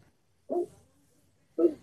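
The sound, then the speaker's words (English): Two short, sharp barks from a dog named Toby, fairly loud, separated by about a second of near silence. “Sorry, I'm staring at my dog.”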